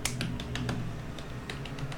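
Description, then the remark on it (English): Quick, irregular clicks of typing on a computer keyboard, about ten keystrokes in bursts with brief pauses, over a steady low hum and no voices. “I'm typing, go ahead.”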